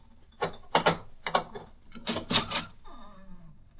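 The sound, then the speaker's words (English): A bolt on the outside of a door is drawn back in a few loud, grating metallic clacks and scrapes, followed by a lower, drawn-out creak that slides downward in pitch. “Here, this is the door. Look, it's bolted on the outside.”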